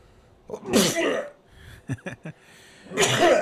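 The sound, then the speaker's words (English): Two loud sneezes, each a sharp breathy burst about two seconds apart, with a few quick clicking catches in between. No talking. “sneezes out gold.”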